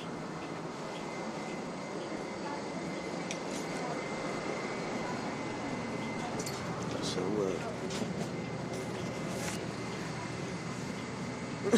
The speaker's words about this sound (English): Good day. We're on the bus now.